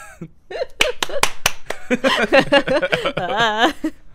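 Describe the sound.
Four sharp, crisp hand claps ring out in an uneven sequence, with a lively voice chattering over and after them in an animated, sing-song way.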